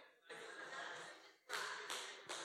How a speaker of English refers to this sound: Thanks for the one hand clap. Appreciate that. Feeling the love.